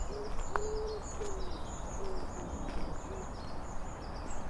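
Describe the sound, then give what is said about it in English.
Soft, low cooing of a dove or pigeon repeats in a loose rhythm, several hooting calls drifting over steady outdoor background noise beside the Monbrecon Canal with moored boats, no voices present. “All doves and pigeons sound good.”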